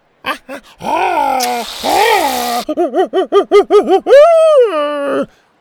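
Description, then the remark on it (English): A voice imitates a monkey howling happily as it squirts frosting into its mouth, perched high up in an open ship: a few yelps and a long whooping cry, then a quick run of excited hoots ending in a loud, sustained howl, alone. “Once he found a nice place to perch himself, high up in the open ship, he squirted the frosting into his mouth and howled happily.”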